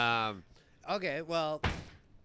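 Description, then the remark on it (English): People talk briefly, then a door on a latch falls shut with a single loud, sharp slam that cuts in abruptly and fades quickly. “Like, what kind of door is that where it's just on the latch door? So, like, it just falls down.”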